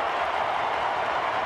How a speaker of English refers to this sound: I think this is the first time in the fourth quarter that the Sooners have set up shop truly over in the Texas end. And this Texas crowd has come to life in the north end zone.